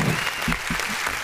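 An audience claps steadily in a dense, continuous patter of many hands, loud and sustained with no voices standing out above it.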